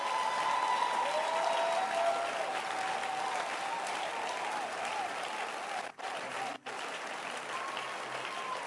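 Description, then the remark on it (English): A church audience claps their hands in sustained, dense applause to show appreciation for church workers such as the ushers and the media photography team. The applause stays steady and fairly loud for several seconds, with a couple of brief cut-outs near the end and a faint background murmur. “And I want us to, with a loud hand clap, appreciate all these saunters.”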